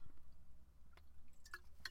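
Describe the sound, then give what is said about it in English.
Wet mouth sounds of someone taking a big sip of water: soft slurps and a few small clicking swallows over about two seconds, quiet and intimate, with no talking. “let me take a big sip of water before I tell you this story, because it's a doozy.”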